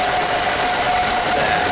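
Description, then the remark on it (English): A blender grinds about 50 glass marbles in its jar on the ice cream cycle, its slowest setting, turning them to glass dust. It makes a loud, steady motor whine with a constant mid-pitched hum and a dense, harsh rushing noise throughout, without pauses or voices. “I'm going to place approximately 50 marbles in a jar, and I'm going to run the ice cream cycle, which is the slowest cycle we have.”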